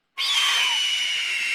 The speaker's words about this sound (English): Play that eagle scream it again. That was fun.